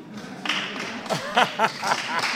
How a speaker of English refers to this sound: I want to remind the crowd that clapping is a disruption.